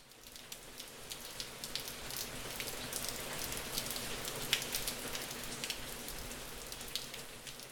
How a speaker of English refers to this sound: But all she could think about was the rain that she could hear.